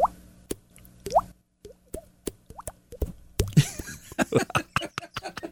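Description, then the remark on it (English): Hollow, pitched plops made by flicking a finger against a cheek, imitating dripping water: a few spaced drips at first, then a busier, overlapping burst of quick pops, each with a bright rising tone. “You click your finger against the side of your mouth and you make a...”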